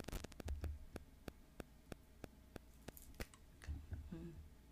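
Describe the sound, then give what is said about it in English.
Low electrical hum of static on a recording runs steadily underneath a rapid, regular series of sharp static clicks, crackling like interference on the line; faint and continuous, with no clear voices. “And I found out that, I'm sorry, this fucking static is irking me.”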